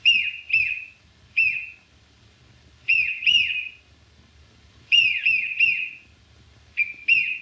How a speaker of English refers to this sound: So the business with the whistle when Charlie swallows the whistle at the party is on the print.